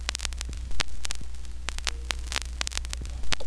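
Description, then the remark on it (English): Dense crackle and scattered sharp pops from a worn vinyl record over a steady low hum, with a couple of louder thumps like the needle skipping; no voices. “No more records with their scratching and skipping.”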